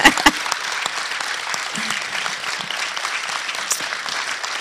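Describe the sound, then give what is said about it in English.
Steady applause from a crowd, a dense wash of many hands clapping at an even loudness for several seconds, with a louder burst at the very start. “Yeah, go ahead and clap.”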